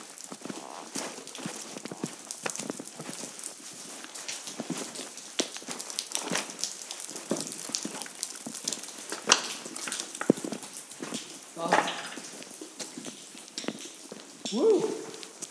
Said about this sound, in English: I can't resist the actual process of going into that dark enclave where the water is dripping.